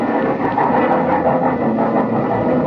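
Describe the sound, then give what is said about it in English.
A train bound for Chicago pulls into a station platform at night, a loud, steady mechanical roar with a low engine drone and faint metallic tones, no voices over it. “When the train finally pulled in, they walked me down to my car and stood there with me in the vestibule until the train was ready to pull out.”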